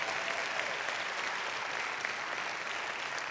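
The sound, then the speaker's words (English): An audience claps together in sustained, dense applause, a steady wash of many hands with no pauses and no voices standing out, holding an even loudness throughout. “Come on, if you got to clap, everybody.”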